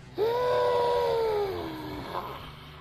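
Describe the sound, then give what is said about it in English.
A single drawn-out, eerie wailing scream of the legendary Alabama monster called the White Thing, like a cat-like yowl, jumps up sharply then slowly slides downward for about two seconds. It is loud, with no talking. “It has been described as varied from a dog to a Bigfoot to a ghost, but two things are constant. A ghost? The monster's long white hair and its scream.”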